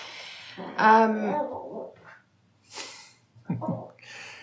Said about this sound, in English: I'm really sorry because in the background now my dog is doing her rolling around making noise stuff.